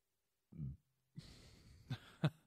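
A short, low, throaty burp from someone drinking a Monster, followed by a breathy, noisy exhale with two brief sharper bursts near the end.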